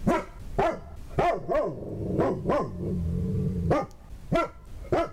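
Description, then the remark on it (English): Major, the dog of President-elect Joe Biden, barks in a rapid, uneven series of sharp, loud yaps, with a low rumbling growl running underneath in the middle stretch before the barking resumes. “Oh, Major Biden, the new dog for President-elect Joe Biden, had a few words to say this morning.”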